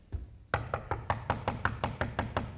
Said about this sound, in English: And now I'm at the outside of your house and I'm knocking. I'm trying to get your attention.